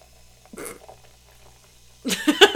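A soda can pops open with a short crack and hiss, then after a pause a louder burst of bubbly fizzing crackles up; the drink smells of lime.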